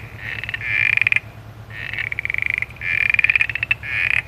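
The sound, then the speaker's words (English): A southern smooth froglet calls in repeated bursts of rapid, creaky pulses, each lasting about a second, fairly loud over a steady low background hum. “This one is the southern smooth froglet.”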